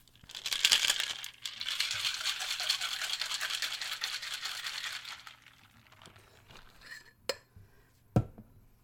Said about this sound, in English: Okay. Add ice. And shake. Whoa.